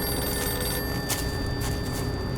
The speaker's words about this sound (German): Keiner hier. Aber die Telefonzelle klingelt. Das gibt's doch nicht. Eine einsame, im gleißenden Sonnenlicht klingende Telefonzelle. Mitten im amerikanischen Niemandsland.